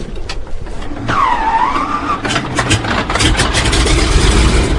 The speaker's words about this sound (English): With a shove, the float plane taxis to the far end of the lake, where a pair of red-throated loons watches with alarm.